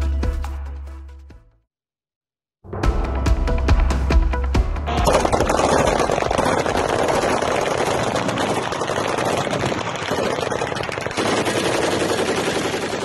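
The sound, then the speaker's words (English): Ukrainian air defense fire against a barrage of Russian drones targeting Kyiv: a low rumble, a brief silence, then rapid bursts of automatic gunfire that swell into a loud, sustained roar of continuous shooting, with no voices. “So that sound, and in there you can see as it lights up, those images of Ukrainian forces repelling an intense barrage of Russian drone attacks.”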